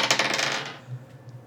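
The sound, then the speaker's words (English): Dice rolled for an attack clatter across a hard table in a quick burst of bright rattling clicks that settle within a second, leaving only a faint low hum behind. “Oh, yeah, I gotta roll.”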